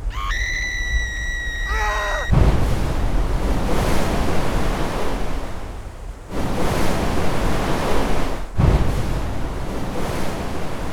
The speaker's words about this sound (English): A 2-foot wall of water appeared out of the blackness and struck with surprising force.